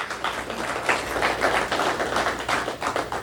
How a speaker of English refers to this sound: House Bill 397, which is formerly known as the Butch Lewis Act, it's now known as the Multi-Employer Pension Rehabilitation Act, was passed in the U.S. House. That's fantastic news. Yes, sir, you should be clapping. We should all be clapping.